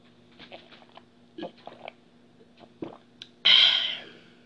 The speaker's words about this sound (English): That's champion water swallowing.